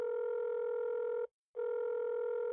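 A telephone call being placed rings on the line, heard as a steady electronic ringback tone: two long buzzing tones split by a short silent gap, clear, with no voices.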